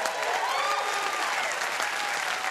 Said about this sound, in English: Now, to be clear, I instigated that applause for the 300th episode, not for me. But now, this is the applause for me.